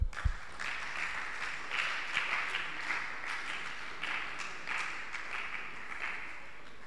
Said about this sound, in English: We love you. Clap for them.